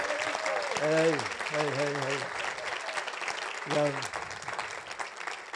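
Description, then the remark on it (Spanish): After a sermon, an audience applauds God, clapping steadily for several seconds in a dense, loud patter while a few voices shout short exclamations over it. “Un aplauso a él, ¿no?”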